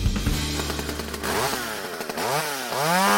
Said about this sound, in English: Steel power tools. There are so many out there to help you get the job done in your front yard, in your backyard, in the side yard, helping you on the front porch, get everything blown off.